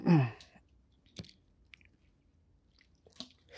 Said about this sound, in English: I just needed to take a sip of water.